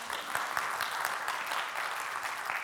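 A crowd applauds steadily, a dense wash of many hands clapping at once with scattered sharper claps poking through, holding an even, moderate loudness throughout with no voices.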